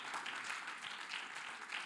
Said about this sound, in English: Somebody say amen. Let's clap our hands unto the Lord just for a moment. Amen.